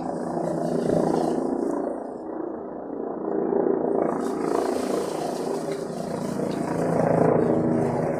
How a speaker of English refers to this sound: We need to have that ready to go every time we hear the helicopter.